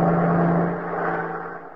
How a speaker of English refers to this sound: Oh, that's the fourth bus that's passed us by, Riley.